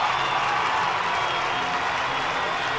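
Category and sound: crowd, crowd applauding and cheering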